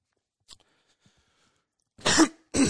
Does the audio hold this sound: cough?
yes